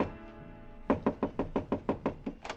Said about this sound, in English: On my way to the elevator, I got a sudden impulse. I stopped in front of room 300 and knocked.